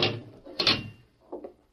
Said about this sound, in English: Go right into the cell, Judge. I'll have to close the door on you.